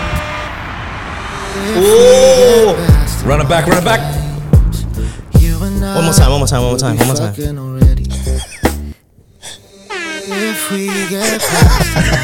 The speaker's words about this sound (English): That was the worst air horn, sorry. You know how like they do that on radio stations and they just repeat it over and over again?